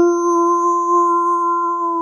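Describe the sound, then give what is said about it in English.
A voice imitates a blaring klaxon alarm with one loud, steady, droning note held for about two seconds. It is unbroken, with no talking around it. “Klaxons are blaring.”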